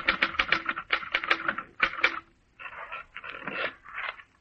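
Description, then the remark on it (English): Rapid mechanical typewriter keystrokes clatter in quick bursts, followed by a short scraping, ratcheting sound like the carriage or paper being moved, all fairly loud with no speech. “You finish the book, get out of bed hurriedly, and sit down at your typewriter.”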